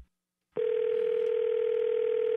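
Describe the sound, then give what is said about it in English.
A telephone call tone as a charity solicitor calls back on a cell phone begins abruptly after a brief click and holds as a steady, unbroken mid-pitched hum for about two seconds, with no voices over it. “You just called me. I asked you not to call me on my cell phone, and now you're calling me back.”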